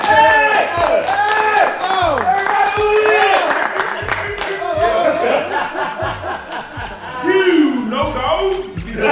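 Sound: audience clapping and applauding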